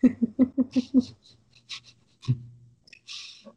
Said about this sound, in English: More dogs.